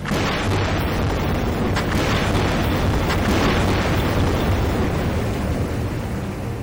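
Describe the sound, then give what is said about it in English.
Underwater seismic air gun blasts from a seismic survey for fossil fuel drilling sites on the ocean floor, with boats firing about 30 or 40 air guns at once: a heavy, continuous low-pitched roar with repeated dull booming pulses rolling through it, loud and steady throughout, with no voices. “So you'll have boats with about 30 or 40 air guns that'll all go off at once.”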